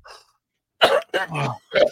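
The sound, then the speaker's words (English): A faint breathy sound, a pause, then three sharp coughs in quick succession, each a rough burst with a raspy throat-clearing edge, after hard laughter. “Yeah, I was laughing and I also I'd cough and I'm like, oh, God damn.”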